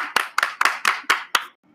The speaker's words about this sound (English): Clap for the bishop.